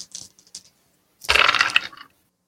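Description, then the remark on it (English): Dice are rolled for a speed check, landing on snake eyes, rattling and clattering across a hard surface in a dense burst of hard clicks lasting under a second, preceded by a few faint, scattered taps. No one speaks. “I'm going to say roll a speed check.”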